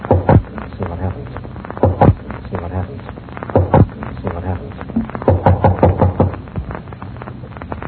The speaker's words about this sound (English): I don't see a doorbell anywhere. No? Well, I'll knock and see what happens.